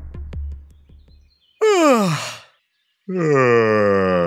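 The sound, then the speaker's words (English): A long, drawn-out yawn with a falling voiced tone, then after a brief pause a second, louder yawn answers it, as if one person's yawn set off another's. Faint taps come first. “In other words, you're more likely to catch a yawn from someone you're close with, like a family member or a friend.”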